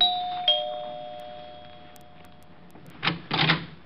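The doorbell of an apartment at 975 Park Avenue chimes twice in quick succession, its clear tones ringing out and slowly fading over a few seconds, followed by brief rattling clatters like a door being opened.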